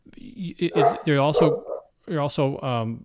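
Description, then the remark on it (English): A Rottweiler guard dog barks in two quick bursts of repeated deep, harmonic barks, with a short pause between volleys. Loud and clear, with no talking over it. “Was that dog on my end or was that your end? That was mine. I'm sorry. My that's my Rottweiler.”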